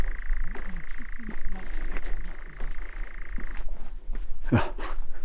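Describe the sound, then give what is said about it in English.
A nightjar churrs in a steady, unbroken mechanical trill for a few seconds, then falls silent, with a brief sharp rustling burst afterward over a low background rumble. “See if I can get really close to this endlessly cheering nightjar. Who doesn't do anything but chir?”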